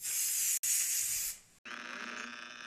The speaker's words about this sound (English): Oh, my face is wet. It's just my Willowback dragon, Aquahees. Ow. Blowing water in my face. Ow, my eye.